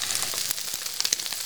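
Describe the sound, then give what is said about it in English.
Steady hissing sizzle of fish frying in a pan, a dense high crackle with a few sharp pops and spits scattered through it, moderately loud and with no voices. “I've just added the place, and it's starting to shrink a tiny bit.”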